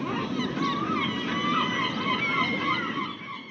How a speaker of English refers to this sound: Seagulls. You might have seen them flocking around Charlotte, sometimes in parking lots or near dumps.